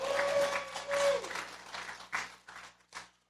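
An audience, asked to applaud if they use Amazon's online store Amazon.com, claps together in a broad, dense burst of applause that thins out into scattered claps and fades over about three seconds, with a faint steady tone underneath at the start.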